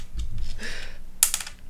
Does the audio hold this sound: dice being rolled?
yes